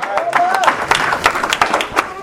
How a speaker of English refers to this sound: Yeah, go ahead and give God another hand clap of praise. Up in here.